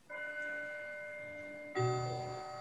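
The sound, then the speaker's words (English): A clock chimes with two bell-like strikes, the second louder and lower, each tone ringing out and sustaining clearly with no one talking over it. “You're somebody's clock.”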